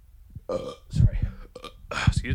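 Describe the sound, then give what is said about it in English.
A couple of loud, croaking burps, each a drawn-out guttural rumble with a raspy, voiced quality, coming one after another with short pauses between. “I know that I burp a lot on the podcast.”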